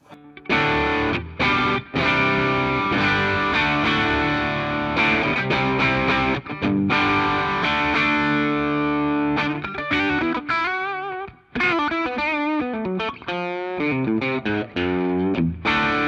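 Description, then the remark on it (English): An overdriven electric guitar on the bridge pickup, through an OD808 overdrive pedal into a Fender Twin amp with the bright switch off, plays loud, sustained chords and bending lead phrases with a bright, gritty edge, heard alone with no talking. “On to the OD808 on the bridge.”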